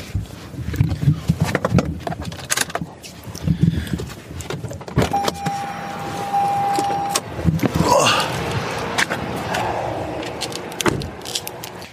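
A car rolls slowly into the driveway of a modest semi-detached home, its engine rumbling, with a brief steady electric whine midway and a few clicks and thumps as it comes to a stop.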